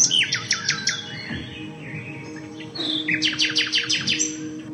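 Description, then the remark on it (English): A nightingale sings in two bursts of rapid, repeated whistling notes, each phrase a quick descending series, with a low background rumble and no talking. “It only sings at night. Now, why does it sing at night?”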